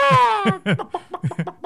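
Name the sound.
voice imitating chicken clucking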